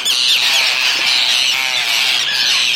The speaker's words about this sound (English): you're hearing now, the long drawn-out call, are skimmers. They've just laid most of their eggs and are just going to be able to hatch in a week or so. And what they're basically doing is revolving around us in a big swirl of flying birds calling.